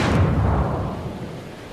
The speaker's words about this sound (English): And deal with the ship's massive guns.